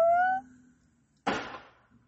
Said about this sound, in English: I think that was a firework. I don't know about that. Questionable.